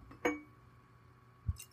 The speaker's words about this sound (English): Oh, she's pouring her... Top it off.